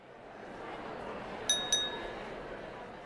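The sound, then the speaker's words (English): Two bright, ringing glass clinks in quick succession, like glasses touching in a toast, over a steady low background hiss. “Let's do that toast one last time.”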